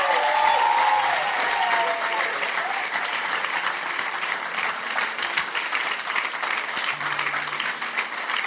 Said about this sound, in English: You may go back to your seats. Clap for them as they go back.